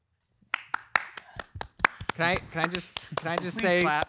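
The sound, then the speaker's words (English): A small audience claps in scattered, uneven bursts for a couple of seconds. Then the claps give way to loud, drawn-out vocalizing voices with a few claps still mixed in. “Can I just say, please clap.”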